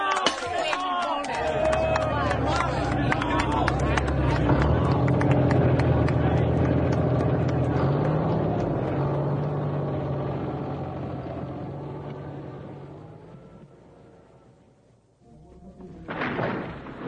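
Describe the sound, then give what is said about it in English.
A yellow bulldozer knocking down a house: a loud, dense crashing of collapsing debris over a heavy engine rumble, slowly fading, then a sharp burst of noise at the end. “And for myself, it gives me great pleasure to take this bottle of very splendid and worthwhile champagne and break it against the noble prow of this very splendid and worthwhile yellow bulldozer.”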